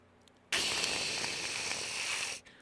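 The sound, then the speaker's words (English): A voice imitates radio static with a single loud, steady hissing rush lasting about two seconds, cutting off abruptly, with no talking around it. “Static. I'm not answering that question.”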